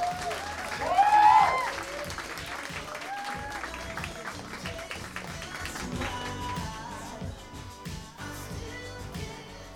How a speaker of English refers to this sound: Big round of applause.